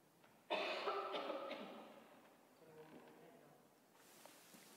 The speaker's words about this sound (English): Because I'm going to go take a cough for a minute.